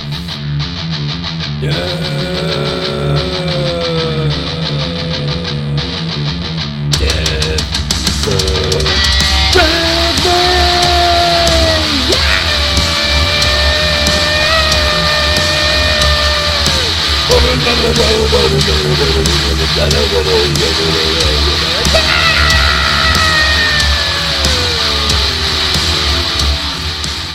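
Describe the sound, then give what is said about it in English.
Loud, distorted electric lute playing by twin brothers on stage drives a raucous rock jam, with bending, sustained notes and wailing, yell-like lines into the microphone over a dense, steady wall of noise that never lets up. “You see the two twin brothers come out on the stage with their electric lutes, and they say, "What's up, Bywood?”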